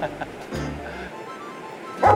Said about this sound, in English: We had the dogs barking. It's all good.